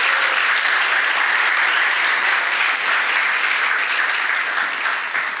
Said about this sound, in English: Thank you guys. Would you clap for them one more time? You guys can take a seat.